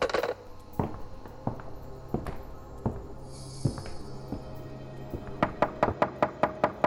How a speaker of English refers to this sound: Sorry to bother you so early, but would you mind knocking on our door? I just want to make sure the kids are up.